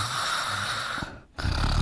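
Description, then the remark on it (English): Loud snoring from a woman in a house: a long rasping, rattly breath, a brief pause, then another harsh snore starting up. No one speaks. “She snores so loud.”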